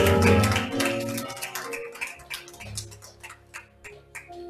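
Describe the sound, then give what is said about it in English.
A church audience claps hands in praise to God after a prayer, a dense burst of applause that starts loud and gradually thins into scattered claps, with steady low organ-like tones sustained underneath. “Somebody shout amen and give God a hand clap of praise.”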